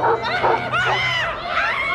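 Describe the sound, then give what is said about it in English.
A dog barks and yelps in a rapid, continuous string of high-pitched barks that keep going for the full couple of seconds, loud and urgent like an alarm effect, played by a carol alarm pressed at the doorstep to drive off carol singers. “Convincing, isn't it? Carol alarms are also available in lion, snake, and rabbi.”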